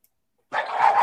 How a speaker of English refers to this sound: Oh, damn dog and cat fight. Cat fight! Cat fight! Cat fight!